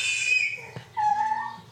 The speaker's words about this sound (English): And it sounds like he woke up from his nap. His monitor.